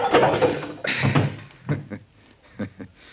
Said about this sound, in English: That's a poke in the jaw I gave you that knocked you out